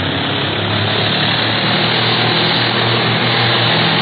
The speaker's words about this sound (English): Turn her over and let's head right back in the prop of that pursuit plane. If that don't make them duck, nothing ever will.